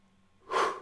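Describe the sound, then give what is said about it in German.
A single breathy exhalation or inhalation swells up after a moment of near silence, airy and fairly loud, then fades out. “Also, loslassen, loslassen, atmen, atmen.”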